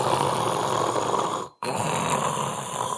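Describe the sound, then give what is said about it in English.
A loud, forceful rush of air through the nose, roughly snore-like, runs for about a second and a half, cuts off briefly, then resumes just as strongly. There is no talking. “So if you're breathing through your nose at a slow rate, it's almost impossible to make this sound.”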